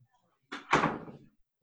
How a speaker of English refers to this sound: No, I just had to shut the door.